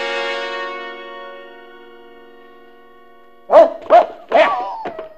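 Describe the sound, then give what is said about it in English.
A sustained musical tone fades away, then a dog lets out three loud, quick barks and a shorter fourth one, with a slight echo. “Jeff, you fool dog, come back here.”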